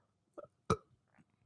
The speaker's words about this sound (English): That's a weak burp.